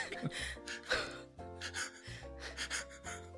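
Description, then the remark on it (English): Heavy breathing with a series of loud gasping breaths, roughly every half second to second, over a steady tonal backdrop. “You can cut all the heavy breathing.”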